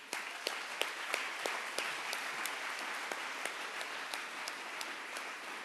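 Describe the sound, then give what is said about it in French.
A crowd applauds for Timothy at a preacher's call, dense clapping filling the whole stretch at an even level, with a few sharper individual claps standing out in a loose rhythm. “Applaudis pour lui.”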